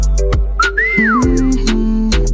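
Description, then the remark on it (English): A single rising-then-falling whistle, clear and fairly loud, sounds over a thumping music beat with sharp hi-hat-like ticks, lasting under a second before the beat carries on. “And from you hear the whistle, you know it's a maestro done.”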